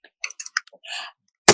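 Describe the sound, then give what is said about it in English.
A voice imitates furious, fast keyboard typing with a quick run of clicky mouth sounds and a brief hiss, ending in one loud, sharp smack like a key being slammed. “You always know when Chloe's on her computer because she's like this.”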